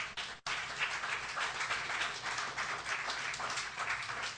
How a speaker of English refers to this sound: If you believe it's true, clap your hands.